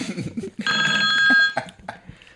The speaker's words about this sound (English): And then they get a phone call.